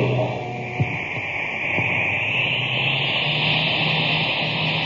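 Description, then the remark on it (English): A 'cosmic surface car' engine, supercharged with super fuel, roars steadily, a loud hissing whine layered over a low hum, holding an even level throughout with no voices. “Boy, that cosmic surface car is really roaring now.”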